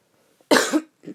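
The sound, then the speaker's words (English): A single sharp cough from a person with the sniffles bursts out loudly, followed a moment later by a softer, shorter throat sound, with quiet in between and no talking. “I got the little sniffles, so if you hear me coughing and sneezing, it's not corona, I promise.”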